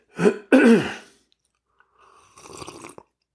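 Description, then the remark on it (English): A short, noisy slurp of someone sipping Freedom Hill coffee, dark and brewed from fresh ground beans, moderately quiet, coming right after a couple of loud throat-clearing grunts. “Now let me take a sip of my preferred beverage for just a moment.”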